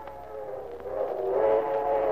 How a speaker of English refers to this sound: And then, from across the meadows, came the long-drawn whistle of a train. Poignant, melancholy. And yet somehow expressive of excitement. Adventure.